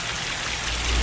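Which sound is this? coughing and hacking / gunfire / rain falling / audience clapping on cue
rain falling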